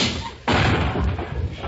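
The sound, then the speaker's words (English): A sudden loud crash of breaking glass bursts as a man comes in through a window, followed by about a second of rough, clattering shards settling, with no voices. “When'd you get the new glass door? Glass door? Why, you just came in through the window.”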